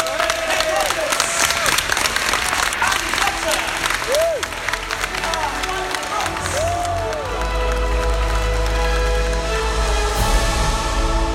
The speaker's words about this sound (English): So, please, huge round of applause for our Jurassic World Evolution guests.